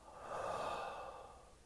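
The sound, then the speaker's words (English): A single slow, breathy exhale swells gently and tapers off over a second and a half, a soft airy whoosh with no voice or other sounds. “Exhale.”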